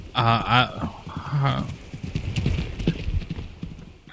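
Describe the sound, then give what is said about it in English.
A small horned horse named Roach trots past, its hooves clip-clopping in a quick, steady rhythm, after a brief burst of high, wavering tonal sound at the start. “I just heard a little horse run by.”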